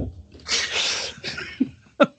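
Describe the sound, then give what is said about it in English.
A loud, raspy burp rumbles out for about half a second, followed by a couple of short, abrupt throaty sounds, with no talking. “I got to let a fucking burp and a half go.”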